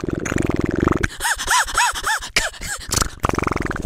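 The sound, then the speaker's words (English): A man's voice imitates a cement mixer: a buzzy, rattling drone gives way to a run of rising-and-falling warbles like a churning drum, then returns to the gravelly rumble. “Cement mixer.”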